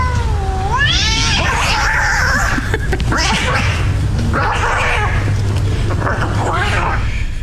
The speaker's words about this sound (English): I just went to YouTube and typed in two cats fighting sound effect, and that's what it was.